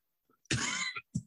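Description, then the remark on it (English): A single loud, close cough bursts out harshly, followed moments later by a shorter second cough, with no talking around them. “Excuse me while I cough in your ear.”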